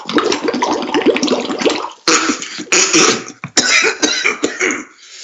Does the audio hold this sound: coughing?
yes